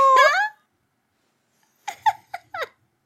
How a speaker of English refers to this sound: But is that my cat? Oh, no!